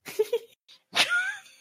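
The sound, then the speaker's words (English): A hungry male cat, two doors away from the speaker, gives a loud, drawn-out meow that rises and trails off, preceded by a shorter, rougher cry, with no talking over it. “There are two doors in between me and the cat. He's starving.”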